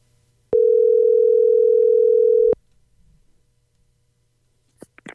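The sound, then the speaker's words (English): A loud, steady telephone dial tone hums for about two seconds as a number is dialed on a phone to call Whipple Superchargers, then cuts off abruptly, leaving near silence broken by a few faint clicks and a brief sharp tap near the end. “if you don't mind, dial that number right there.”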